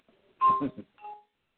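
A short electronic chime rings out clearly, a bright tonal burst followed by a softer second tone, the incoming video call ringtone of a computer, with no one talking over it.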